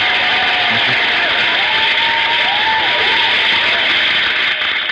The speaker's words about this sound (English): Let me give y'all a hand clap, man. Appreciate y'all for this thing.